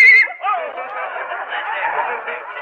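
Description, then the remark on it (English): A loud horse neigh inside a drugstore, from a horse with the heaves: a brief high squeal that breaks into a long, shaky, fluttering whinny lasting a couple of seconds, with no other sounds around it. “A horse? A horse in a drugstore?”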